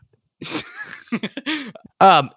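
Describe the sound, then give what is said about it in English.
Two harsh coughs after downing a shot of oil, a short one and then a louder, raspier one about a second and a half later, with brief strained vocal noises in between. “This one's a two cougher.”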